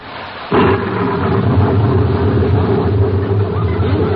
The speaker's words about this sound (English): It's raining. Yes. Oh, that ought to be good for the rhubarb.